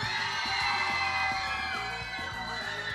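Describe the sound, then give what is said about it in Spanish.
A large crowd at a contest cheers and applauds loudly and continuously for contestant number 3, with shrill whoops and overlapping shouts rising above a steady wash of clapping for the full three seconds. “El aplauso para el número 3.”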